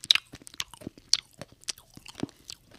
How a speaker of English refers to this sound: And if nothing else, the melodious sounds of my voice with a beautiful lozenge in it as I crunch.